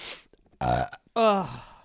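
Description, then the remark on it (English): A loud burp in two drawn-out voiced bursts, the second stronger and more tonal, preceded by a short breathy exhale, with no talking. “That burp helped.”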